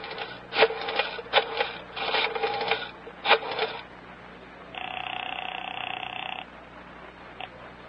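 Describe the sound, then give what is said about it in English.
A telephone being dialed by Special Agent Jim Taylor at FBI field headquarters in the Metropolitan Center: bursts of rattling clicks as the dial turns several times, then a steady, buzzing ring tone holds for over a second, followed by a single soft click. “Special Agent Jim Taylor is making a phone call.”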